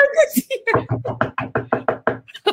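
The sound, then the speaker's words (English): A voice mimics knocking on a door as a sound effect: about ten quick, evenly spaced vocal knocks, fairly loud, after a brief burst of other vocal sounds at the start. “It's actually her door.”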